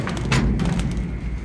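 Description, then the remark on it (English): A metal work-cage door shuts with a couple of sharp clanks and thuds over a steady low mechanical rumble, as a group of Sandhogs in hard hats and yellow rain slickers is loaded into the cage to descend into a shaft or tunnel. “Door down.”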